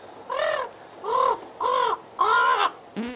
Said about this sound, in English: This episode's audio clip is of a crow named Toby, and he's talking.